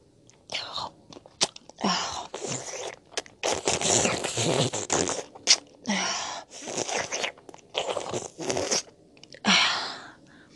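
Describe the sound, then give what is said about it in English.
Loud slurping noises repeat in a string of wet, hissy bursts with brief pauses between them, about eight over ten seconds, and no talking in between. “You're slurping.”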